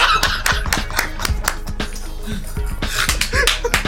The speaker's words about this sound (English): Oh, okay, so we clap today. Give me the church clap.